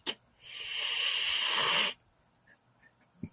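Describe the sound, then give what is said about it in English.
A cat hisses once, a loud, breathy hiss held for about a second and a half before cutting off into near silence with a few faint ticks. “It's a mean ass cat.”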